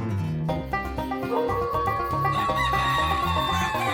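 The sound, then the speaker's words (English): A crowd of chickens clucking and squawking loudly and continuously in a chicken coop as coyotes get into it, a busy, overlapping racket of hens with no pauses and no voices. “Dad burn coyotes getting all up in my chicken coop again and eating all my dad blame gum burn nabbit chickens.”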